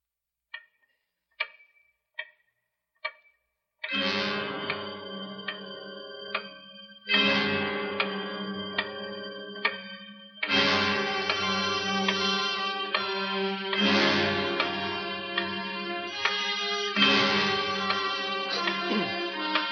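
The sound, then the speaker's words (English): Four sharp, evenly spaced ticks of the big clock from the radio drama The Big Clock sound alone, followed by a series of loud, ringing chime-like tones that swell and repeat every few seconds. “But first of all, listen to the other star, the clock itself, the big clock.”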